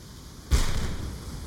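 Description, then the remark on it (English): A single observatory cannon shot, fired at noon, booms out after a brief quiet, its sharp blast followed by a rolling, fading rumble that lingers to the end. No voices. “Every day at noon, the observatory's cannon fired.”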